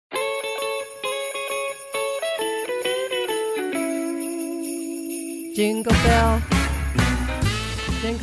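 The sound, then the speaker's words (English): A Christmas rock song opens with a sustained, reedy saxophone line over bright jingling bells, then a full band with pounding drums bursts in louder near the end. No singing is heard. “That's some good saxophone.”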